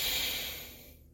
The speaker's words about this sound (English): And breathing meditation is plugging one nostril and breathing in through the other one and then breathing out through that same one that we breathed into.